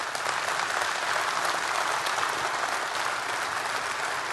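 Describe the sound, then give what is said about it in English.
An audience claps in a steady, dense round of applause that holds at an even loudness throughout, with countless overlapping hand claps blending into a continuous wash of sound, applauding the people who worked hard to make the event happen. “But before we go any further, I want you to give a round of applause for all the guys who work so hard to make this happen to get you here today.”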